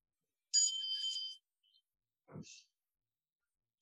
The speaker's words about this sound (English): The bell doesn't mean to stop, it means we're celebrating. Nothing to stop doing.